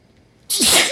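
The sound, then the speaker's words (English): A single sharp, loud sneeze bursts out after a brief quiet moment, with a breathy, hissing release that carries to the end. “… had to sneeze. You get to hear it live.”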